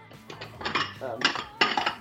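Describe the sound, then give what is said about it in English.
Dishes clink and clatter as a bowl is pulled from the kitchen cupboard where bowls are kept, to put food in for the microwave; several sharp ceramic knocks scattered over a couple of seconds, with faint rustling between them. “If you can hear that, that's me getting a bowl.”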